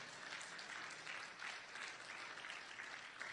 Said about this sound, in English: It always helps create an atmosphere when you clap your hands, and so that's why we often ask you to do so, and we do appreciate that.